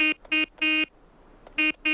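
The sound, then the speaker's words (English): A gun honks like a horn in a Morse code rhythm: two short blasts and a longer one, a pause, then two more short blasts. The tone is buzzy and mid-pitched, loud, with no voices. “The gun starts honking Morse code, which apparently none of the other trucks could have honked.”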